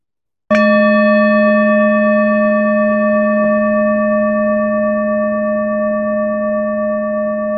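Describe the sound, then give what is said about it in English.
A meditation bell is struck once at the start of a short closed-eye meditation, then rings on with a steady, layered tone that fades very slowly over several seconds, with no voices or other sounds. “And I'll ring a bell at the beginning, one at the beginning and one at the end.”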